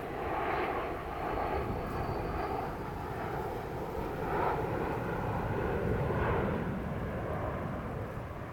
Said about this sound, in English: Airplanes. It's almost too good.